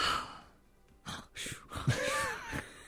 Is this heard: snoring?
yes